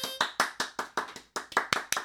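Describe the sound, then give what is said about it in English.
A brief round of applause: about a dozen crisp, loud hand claps in a quick, steady rhythm, sounding like just one or two people clapping, with no voices. “How about a round of applause? We're doing that right now.”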